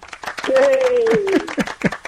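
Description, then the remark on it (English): A short burst of applause from a small group, irregular claps, with a sustained whoop or whistle riding over the middle of it. “Round of applause”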